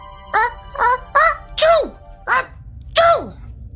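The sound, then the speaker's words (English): A voice imitates a parrot sneezing, producing six short, squeaky bursts in quick succession. Each burst has a sharp pitch that drops, and they are moderately loud. “I swear that he sneezed. His head went back and forward and made a little noise like...”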